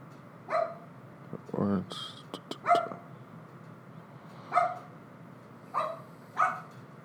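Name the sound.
dogs barking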